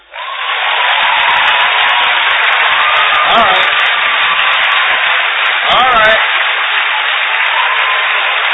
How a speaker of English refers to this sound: Tell me how bad you want me to come back. Show me. If you want me to come back, clap.